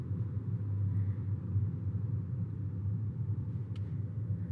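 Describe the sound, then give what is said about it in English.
A steady, low engine and road rumble from inside a car moving slowly at about 5 miles per hour in highway traffic among the same cars, going down a slope, even and continuous throughout with no sharp changes, no other distinct sounds and no voices. “Moving a little faster now, about 5 miles per hour. Still around the same cars. And going down a slope now, slowly.”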